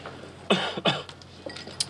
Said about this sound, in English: When he gets a good hand, he coughs.